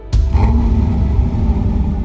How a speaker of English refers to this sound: The promo video ends with a lion's roar.